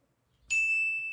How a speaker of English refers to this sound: Let me hear everybody's beep sound to make sure everybody's loud enough.